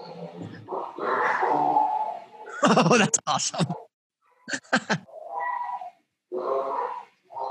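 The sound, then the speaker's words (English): A distressed 265-pound female miniature pet pig lets out loud, harsh squeals and grunts in two rapid clusters of choppy bursts, with people talking before, between and after the outbursts. “My pet pig, she's having a freak out right now.”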